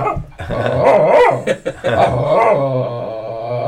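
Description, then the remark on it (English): A 1-year-old female dog wanting attention growls and barks, loud and continuous, with a rumbling, wavering vocal run that stretches into a longer drawn-out whine-like note near the end. No one talks. “That's the poor dog.”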